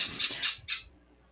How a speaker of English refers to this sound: My birds are very into this today. I'm very sorry, guys.